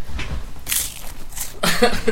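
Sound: crunching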